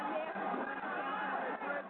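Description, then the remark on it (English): A large arena crowd at an evening wrestling event murmurs steadily, a dense, continuous wash of many voices with no single speaker standing out and no cheers or claps breaking through. “This place has really seen a crowd, the Flyers in the afternoon, wrestling at night.”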